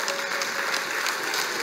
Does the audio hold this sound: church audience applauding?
yes